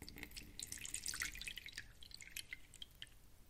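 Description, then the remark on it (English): About 2 cups of broth are poured into a bowl to get it boiling, a splashy stream for about two seconds that trails off into light trickles and drips. No one speaks. “So, I've got about 2 cups of my delicious broth here. I'm gonna pour into the bowl.”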